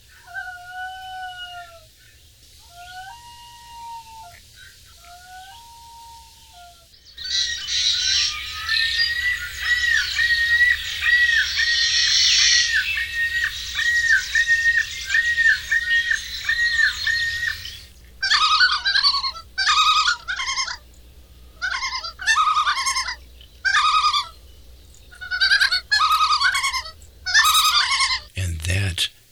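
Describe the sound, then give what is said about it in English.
A common loon calls with mournful, rising wails, then a long, rapidly quavering tremolo, followed by a series of loud, choppy bursts of calling, clear. “Famous sound that if you lived in the Northeast United States, you would know as the common loon.”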